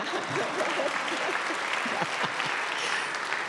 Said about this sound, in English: And as it turns out, oh, somebody was going to applaud. Go ahead.